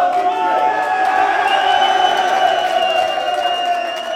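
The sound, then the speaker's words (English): At night, a large crowd shouts and cheers enthusiastically, set off by a shrill locomotive whistle, a dense, loud wall of overlapping voices that holds steady throughout and fades slightly at the very end. “Finally, after days of searching, the shrill locomotive whistle sounded, disturbing the night and triggering enthusiastic and tumultuous shouts.”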